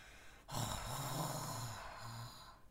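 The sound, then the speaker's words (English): A drawn-out, rumbling snore followed by a shorter second one, rough and throaty, with a breathy hiss underneath. No one speaks. “Soon, he fell asleep and began to snore aloud.”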